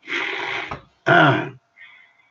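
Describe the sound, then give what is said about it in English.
A person clears their throat twice during worship, two harsh raspy bursts separated by a brief pause, followed by a faint, quieter exhale or hum at the end. “Excuse me for clearing my throat up, but I just about to sit here, amen, and just worship.”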